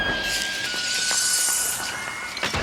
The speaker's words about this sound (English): Andy's mom trips the power upstairs, and the doll screeches and screams and flies backward into the root cellar